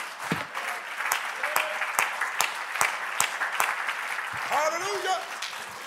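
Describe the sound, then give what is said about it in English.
A crowd claps hands unto the Lord in a dense, steady rhythm, with sharper accented claps at a regular beat about twice per second, and voices rise over the clapping near the end. “Clap your hands unto the Lord and magnify him.”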